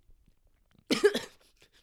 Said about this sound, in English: No, you might start coughing. I get a cough on.